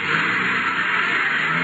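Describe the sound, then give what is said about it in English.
A car engine roars loudly as a man hurriedly drives away, a steady, rushing drone that holds for under two seconds with no voices. “Hopped into his car and took off like a scalded skunk.”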